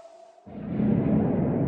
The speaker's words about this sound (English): Well, at 143, there's the faint sound of a creeper hiss and explosion echoing through the cave.